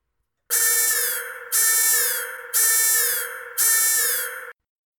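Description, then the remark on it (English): A loud electronic alarm buzzes in four identical harsh bursts of about a second each, repeating in a steady rhythm with no gaps between them and no voices. “Man, does this guy have a lot of different alarms or what?”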